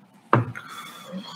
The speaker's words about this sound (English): One last shot. One last one for the road, boys. Guys in the chat, we offer you to participate with us if you want to. One last one to Stout. Clink, clink, clink. Yeah. Here's to you, Stout.